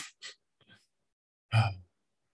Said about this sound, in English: stupid sneeze.